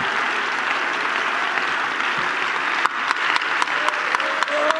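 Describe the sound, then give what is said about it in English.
An audience bursts into sustained, dense applause as a hand clap of praise to the Lord, a steady wash of many hands clapping, with sharper individual claps and faint cheering rising out of it in the second half. “Give the Lord a hand clap of praise right now and worship him.”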